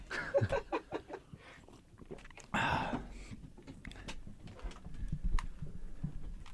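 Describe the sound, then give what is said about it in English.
A pigeon coos, a soft throaty burble, while a louder burst of noise briefly cuts through partway along. “Hey, man, throw some water on that bird.”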